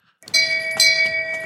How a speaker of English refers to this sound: The subject line is Ring the Bell. And you know what? I don't mind if I do. Oh, look at you with a little bell.